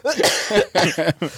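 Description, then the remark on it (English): A burst of loud coughing: roughly four harsh, voiced coughs in quick succession, the first one drawn out, with no talking in between. “I'm laughing, but I'm holding my cough.”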